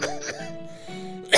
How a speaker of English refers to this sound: We interrupt this program for a quick coughing break. Coughing brought to you by Halls.